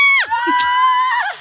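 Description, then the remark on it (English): A single voice lets out a loud, high-pitched sustained shriek, imitating excited fans screaming. It holds for about a second before sliding down and breaking off. “Like you went, like when you went back to smoke by the tour bus and everybody went, ah! Yes, like that.”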